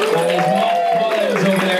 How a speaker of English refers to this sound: Let's have a big round of applause for our court artist over here